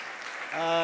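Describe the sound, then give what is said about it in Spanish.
A brief wash of applause from a church audience at a morning service, as parents applaud themselves for supporting the youth congress: a dense crackling clatter, then a voice comes in over it, holding a steady tone as the clapping continues underneath. “¿Por qué no se dan un aplauso a ustedes por cooperar?”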